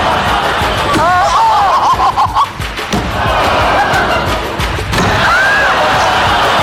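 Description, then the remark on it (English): A big crowd roars loudly and steadily, with bursts of laughter and drawn-out gasping exclamations rising out of the din, while sharp thumps and crashes break through now and then. “There's a big crowd. Sometimes they're laughing, but sometimes they're going, oh.”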